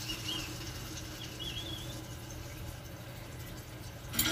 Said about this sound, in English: I'm gonna turn the water on. Please don't spray me or anything. Okay, water turning on.